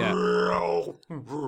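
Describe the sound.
A voice imitates a zombie growl in the style of "emphysema dog" from Bob and Doug McKenzie, a raspy, strained groan drawn on an inward breath, loud, breaking briefly before a second shorter growl.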